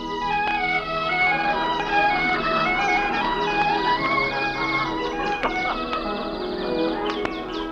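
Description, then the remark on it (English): A dense chorus of birds twittering and chirping in giant redwoods at sunrise, beneath snow-capped mountains, with many overlapping high calls and quick chirps forming a steady, busy wash of sound with no talking. “Birds are twittering in the giant redwoods.”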